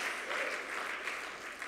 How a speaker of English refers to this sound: And this past Sunday was an amazing Sunday, and we thank God for the leaders of the Tree of Life Church. Can we give all of our leaders a great big hand clap of appreciation? Thank you, Lord.